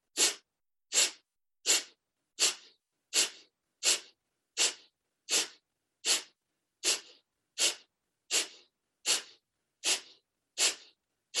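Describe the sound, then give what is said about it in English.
Forceful, rapid breaths pumped out through the nose in a breathing exercise, the belly button pumped towards the spine, about sixteen sharp bursts in a steady, even rhythm, fairly loud with no talking. “And inhale through the nose. And then you're going to blow out with pumping your belly button towards your spine.”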